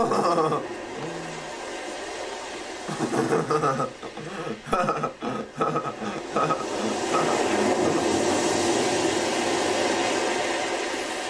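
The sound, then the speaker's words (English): Ocean waves roar in a steady, hissing wash that briefly breaks up as people talk in the middle, then swells back into a full, continuous surge of surf. “I feel like I feel like I could just listen to this ocean for the rest of my life.”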